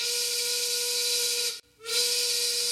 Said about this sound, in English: Insert train whistle here.